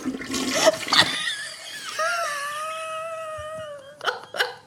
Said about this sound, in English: Basically, there's a powerful vacuum that pulls the feces into a composting tank and eliminates water usage, and then it breaks it down and makes a fuel cell which powers some of the building's mechanisms, such as the hot water heater.